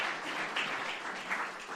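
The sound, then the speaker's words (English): A crowd applauds steadily, dense overlapping hand claps forming a continuous hiss-like patter at moderate volume, with no voices, for under two seconds. “Give him a clap.”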